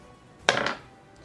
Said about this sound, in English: So roll the damage. So it's max damage on the dice. Roll the dice again.